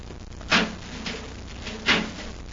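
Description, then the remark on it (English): A metal door, leading to an airlock, being opened: two sharp clanking thumps about a second and a half apart, over a steady low background hum with no voices. “There's a metal door, Hap. Let's see if we can open it.”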